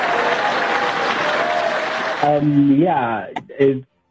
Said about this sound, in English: And so I'm just going to allow the editing team to give you a round of applause for that. I would ululate if possible. But here's a big round of applause for you, sir.